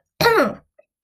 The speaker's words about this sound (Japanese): ごめんなさい。咳がちょっとね。